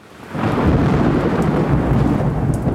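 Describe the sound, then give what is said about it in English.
A deep, loud rumble of thunder swells in within the first half second and rolls on steadily, with a hiss like heavy rain mixed in underneath. “Thunder is the sound made by lightning.”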